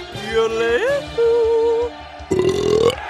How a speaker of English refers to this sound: Next, we heard from Sweden's …, which is, wouldn't you know it, Swedish for burp.